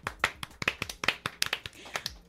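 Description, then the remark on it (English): A thin, half-hearted round of applause: a few people clapping unevenly, with sharp claps at irregular intervals for a couple of seconds and no cheering. “That was the most lame round of applause.”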